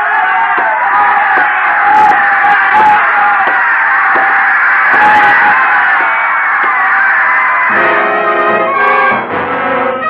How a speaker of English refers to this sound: The crowd was screaming for the kill as I walked out.